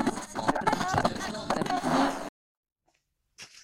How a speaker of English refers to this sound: You can hear those loud pages. That's the sign of a good book, is when you can hear the pages turning.